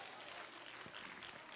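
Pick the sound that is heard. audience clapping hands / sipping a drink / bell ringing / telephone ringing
audience clapping hands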